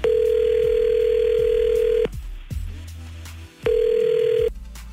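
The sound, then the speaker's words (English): A steady telephone ringback tone sounds twice as a call is placed, a long continuous buzz for about two seconds, a pause, then again, loud as if heard through a phone line, with no voices. “So what we're going to do is call her now with you listening on the phone silently.”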